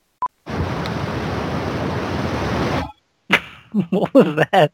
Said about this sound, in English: What was that? What? Did you like... There was like a big thing of static.